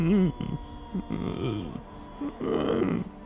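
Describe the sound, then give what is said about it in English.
A voice imitates the strained, groaning breathing of a 10 to 11 foot tall creature with long limbs, a wide rib cage, pale skin, a deer-like skull and an equine neck. The sound is several low, wavering moans and rasping breaths in uneven bursts, with pitch sliding up and down, fairly loud, and no words. “Like strange, belabored, groaning breathing.”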